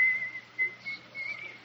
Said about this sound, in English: I hear the guard coming. He's whistling. He's always whistling.